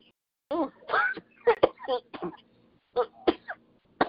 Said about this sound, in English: I start coughing real bad.